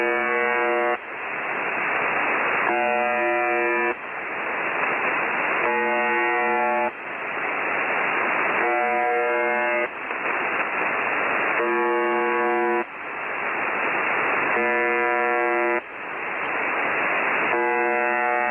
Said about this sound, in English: One example, which is sometimes classified as a number station, is a Russian language station called the Buzzer. It's called that because most of the time it just transmits an annoying buzzing tone over and over again, like this.